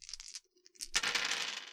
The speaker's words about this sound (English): All right. So I'm going to reroll those 5 dice.